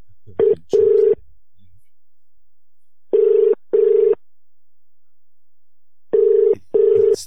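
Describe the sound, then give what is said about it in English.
A telephone rings while a caller is transferred to a store's fragrance department, in a double-burst pattern, three pairs of steady buzzing tones separated by silent pauses, clear and moderately loud with no voices. “Transferring you now.”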